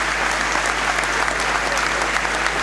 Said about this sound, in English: And Jones will come on for Cannon, who will get a good round of applause.